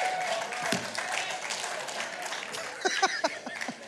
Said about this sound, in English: That's the biggest cheer I've got all morning.